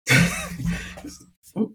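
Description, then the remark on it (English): A person clears their throat roughly, a raspy burst that nearly turns into a cough, followed after a brief pause by a shorter second rasp. “I thought I had a cough. It almost did.”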